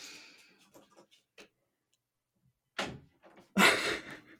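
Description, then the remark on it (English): A door is handled and opened with faint rattling clicks to let a whining pet out, followed by a quiet pause, then a couple of louder whooshing thuds as it swings shut. “I had to let him out. I'm sorry. He was sitting there whining.”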